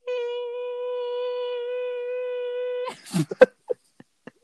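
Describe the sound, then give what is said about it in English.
A voice holds a steady, mid-pitched droning hum for almost three seconds, imitating the sound of the Earth rotating, then breaks off into a few short, scattered bursts of noise. “and that's basically the sound of the planet rotating.”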